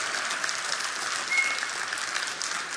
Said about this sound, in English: Come on, let's give the Lord a shout and a clap right now.